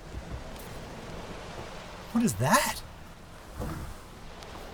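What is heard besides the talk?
ocean waves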